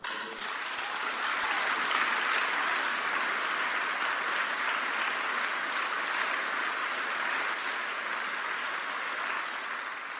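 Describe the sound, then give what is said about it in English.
Sustained applause from a large audience welcoming Ralph Nader to give his speech 'One Person Can Make a Difference', a dense, steady wash of clapping for about ten seconds without letting up, with no voices standing out. “Please give a rounding applause to Ralph Nader, our hero.”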